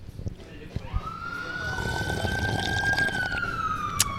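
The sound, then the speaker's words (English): An ambulance siren in San Francisco sweeps up and holds a loud, steady wail as it passes by, its pitch sagging slightly as it moves away over a low rumble of street traffic. “We're going to let this ambulance go by real quick here, and then...”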